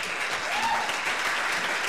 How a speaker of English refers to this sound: And please, let's give a round of applause.